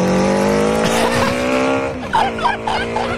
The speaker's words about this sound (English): It's a 750cc motor instead of a lawnmower. That's awesome.